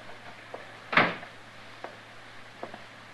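A door shuts with one solid thud that fades quickly, followed by a few faint clicks and knocks over a low steady hum. No one speaks.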